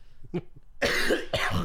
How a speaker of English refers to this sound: Hey, I should be the one coughing. Well, go ahead. Okay. There it is.